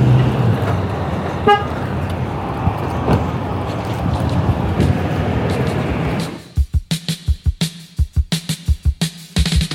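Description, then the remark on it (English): Pickup trucks roar steadily past on a road, with a short horn toot early on. After about six seconds the traffic fades, leaving a series of rhythmic thumps. “Don't want to get run over by the many pickup trucks, and there are many.”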